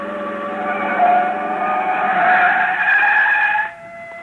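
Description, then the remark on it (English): Car tires screech in a long, loud skid that squeals steadily for several seconds, then cuts off abruptly as the car comes to a stop near a dock. “Do we ditch the car like we planned?”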